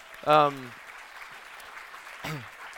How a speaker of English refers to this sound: But I want to celebrate that if you are an old or a new Kid Town volunteer, would you raise your hand? Anyone in here volunteered for Kid Town? Yes, will you all clap for these people?